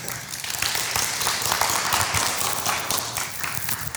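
A crowd applauds in a steady, dense round of clapping, many hands overlapping into a continuous bright patter that holds at an even, fairly loud level throughout.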